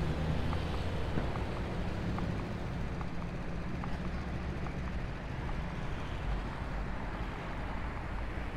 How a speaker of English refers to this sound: It is then that they see the trucks in the distance heading towards them.